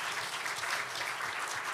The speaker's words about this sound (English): Let's give a round of applause for all our teachers, please.